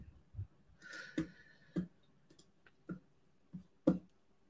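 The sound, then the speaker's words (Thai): A malfunctioning computer mouse clicks about seven times at uneven intervals while its problem is being dealt with, each click short and sharp, with quiet pauses in between and no one speaking. “เดี๋ยวนะเมาส์ผมมีปัญหาครับพี่เอางี้ระหว่างที่รอผมขยับทางเทคนิคนิดหน่อยนะฮะ”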